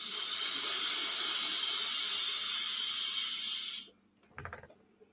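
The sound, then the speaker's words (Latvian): A steady, bright hiss of warm vapor being inhaled for about four seconds from an e-cigarette coil about one and a half centimetres from the mouth, cutting off abruptly, followed by a soft breathy exhale. “Ja, koils, viņš tiek iestums iekšā, un tu mums ir reāli centimetrs pusotra maksimums, tas ir attālums no koila līdz mutē, tāda tvaiks pavisam īsts ceļš viņam ir, viņš nāk iekšā diezgan tāds silts, ja ne pat karsts uz beigām.”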